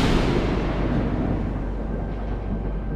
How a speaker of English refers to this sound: Cue the thunder crash.